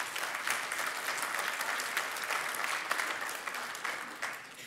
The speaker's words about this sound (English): Yes, you can clap for God.